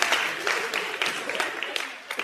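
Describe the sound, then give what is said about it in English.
A small group claps in a steady patter of overlapping hand claps, moderately loud and sustained throughout, with faint voices murmuring beneath. “All six of you, the lady's scared to clap.”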